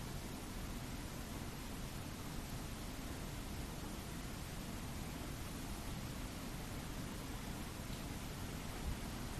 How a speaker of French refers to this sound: La pluie. On n'y réfléchit pas, on la vit. C'est une rencontre avec le vivant.